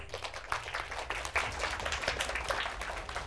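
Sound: audience applause welcoming speaker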